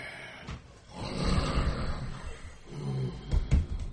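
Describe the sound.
Loud snoring: a long rasping, rumbling inhale followed by a shorter gravelly snort near the end, with no voices.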